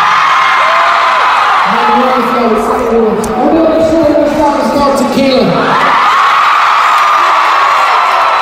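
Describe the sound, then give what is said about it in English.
A concert crowd cheers loudly, a dense, sustained roar with many overlapping shouts and whoops that swell through the middle before easing back into a steady wash of noise. “was awesome when the crowd just had that energy”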